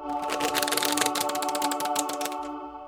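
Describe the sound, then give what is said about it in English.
A deck of playing cards is riffle shuffled, a rapid, crackling flutter of card edges lasting a couple of seconds before stopping, over a faint steady background hum. “It's just your basic shuffle.”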